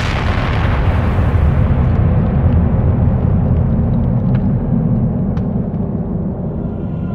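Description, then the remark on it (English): A massive explosion, caused by hundreds of fireballs converging at one point, roars continuously, a loud, dense low-frequency rumble with crackling debris layered on top, sustained at full intensity for several seconds before tapering slightly. “The bulk of hundreds of fireballs converged at the same moment into a single point, causing a massive explosion.”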